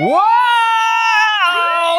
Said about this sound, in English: Is that our Rudy Giuliani news alert siren? The siren we had installed in the studio to tell us whatever something funny happens to Rudy Giuliani?